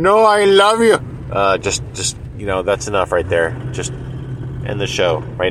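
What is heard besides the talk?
car interior noise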